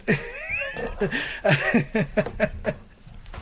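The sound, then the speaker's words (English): A cat, Mr. Jinx, yowls and wails in a string of wavering, rising and falling cries, several drawn-out bursts, loud at first and trailing off toward the end. “And I'll be sending Mr. Jinx back to the cat sanctuary as soon as I get there.”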